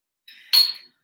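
A bottle of Brooklyn Oktoberfest beer is opened: a faint glassy ring, then a sharp bright pop with a brief hiss as the cap comes off, fading within about half a second. No one speaks.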